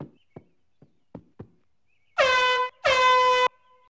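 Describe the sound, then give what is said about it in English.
A few quick knocks or taps, then two loud, sustained air horn blasts in a row, each lasting about half a second with a brief gap between them, blaring. “Now, where's my giant foam cowboy hat and air horn?”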